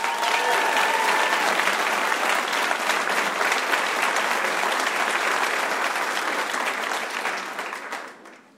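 Sustained audience applause welcoming a band with mandolin and fiddle onto the Radio Live show, a dense wash of many hands clapping at a steady loud level for about seven seconds before tapering off near the end, with no voices.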